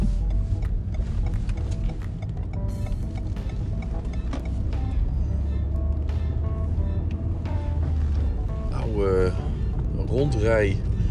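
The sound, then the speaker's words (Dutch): A large open-top sightseeing bus, like a London double-decker but without the upper deck, rumbles past, its deep engine drone steady throughout, with background voices and a few rising whining tones near the end. “Rondrij open busachtige bus. Net zoals die Londense dubbeldekkers, maar dan zonder dubbele dek.”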